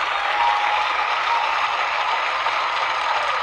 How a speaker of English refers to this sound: And I think I deserve like a little round of applause. So when editing, Sarah, put a little round of applause right here.